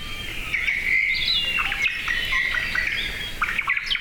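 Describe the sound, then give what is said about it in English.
High, thin chirps and twittering calls of white-eyes, small birds about 4 inches tall, run continuously over soft background noise, several overlapping bursts of quick tweets at moderate loudness, with no voices. “White-eyes are known as generalists. They eat a variety of foods such as insects, fruit, and nectar.”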